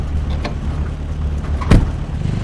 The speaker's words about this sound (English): Start the Jeep. We gotta go now.